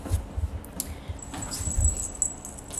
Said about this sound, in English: So, sorry, my cat making noise.